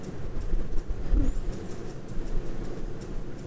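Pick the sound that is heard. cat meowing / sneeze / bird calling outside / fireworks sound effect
bird calling outside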